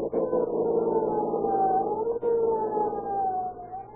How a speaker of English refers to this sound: With a roar and siren screaming, they race through city streets to protect your lives and property.